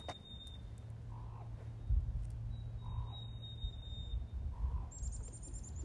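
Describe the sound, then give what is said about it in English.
Birds call outdoors on a cold day of 34 degrees over a steady low rumble of wind or traffic: thin high whistles and trills, plus a softer repeated chirp every couple of seconds, all fairly faint. “Listen to all those birds.”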